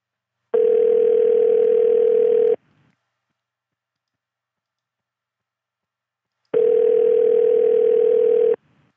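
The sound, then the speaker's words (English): A telephone ringback tone sounds twice, each steady buzzing ring lasting about two seconds with a long silent gap between, clear and fairly loud over a phone line. “Ringing, ringing, ringing.”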